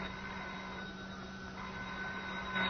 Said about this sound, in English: Yeah, I'll get the phone.